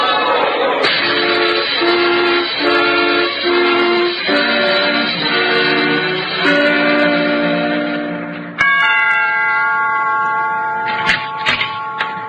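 A train on the tracks blares loudly with sustained, chord-like horn tones that step up and down in pitch over a steady rumble, ending on a brighter, shriller chord.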